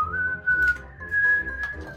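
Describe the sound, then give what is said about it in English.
A person whistles a slow, smooth melody imitating a penny whistle solo, with long held notes that glide gently upward, clear with no talking. “it's the penny whistle solo from …”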